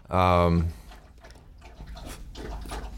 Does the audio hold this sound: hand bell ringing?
no